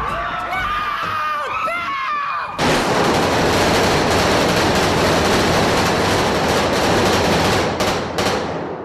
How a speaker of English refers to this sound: I timed it. From the first second that gunshot is fired to the last, it's about 5 seconds. And they kill what? 8 people? 9 people. 9 people. It took 5 seconds to kill 9 people,